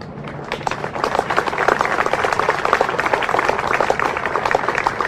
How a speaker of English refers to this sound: This is truly a win-win effort for everybody, and you all deserve a round of applause for this day.